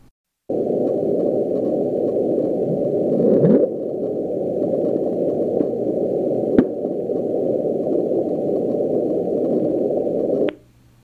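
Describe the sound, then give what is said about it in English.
The bloop, a mysterious underwater ocean sound of unknown source, picked up again and again during one summer and heard over thousands of miles of water: a steady, muffled low rumble of noise lasting about ten seconds, with a short upward-sweeping swell early on and a faint click later, with no voices. “Apparently during the summer, they picked up this sound again and again. After which it was never heard from again. No one knows what made it.”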